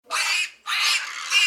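Piglets squeal in a pig barn during the suckling period, two loud, shrill, harsh bursts, the second longer and rising at its end, with no talking.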